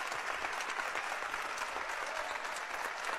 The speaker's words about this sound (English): And the Central Lady Rebels clapping on the floor as well. As the fans give her a standing ovation.